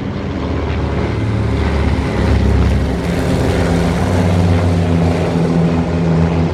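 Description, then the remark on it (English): A steady, heavy engine drone with layered low harmonic tones fills the air as about 17 twin-engine B-18 propeller planes fly overhead in a big V formation, loud and continuous with a faint rhythmic beating. “Those are twin-engine planes up there.”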